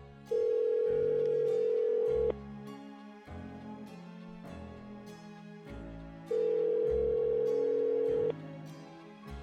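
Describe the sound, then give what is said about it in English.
A phone line ringback tone purrs twice as a call is placed to a doctor, each steady ring lasting about two seconds with a pause between, heard clearly over soft background music. “I'm going to sit down at my computer, and before I handle any of the 100,000 things that I'm going to have to do with all of the everything, I'm going to put the card in front of me and pick up the phone and call”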